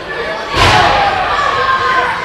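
In a wrestling match, a loud, sharp chop from one wrestler cracks out once over a steady roar of arena crowd noise, and the crowd's reaction swells and stays loud after the hit.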